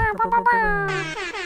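Loud, brassy air horn blasts sound, a few short honks leading into a longer sustained blare that fills the second and a half.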